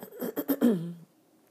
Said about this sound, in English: Excuse me for clearing my throat. Again, took a 6-hour flight to the West Coast today.